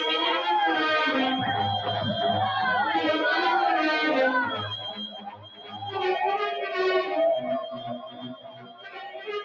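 A dense chorus of eerie, wavering howls and chirps from flying monkeys during an air assault, many overlapping voices rising and falling continuously and loudly for the whole stretch, with a low rumble underneath.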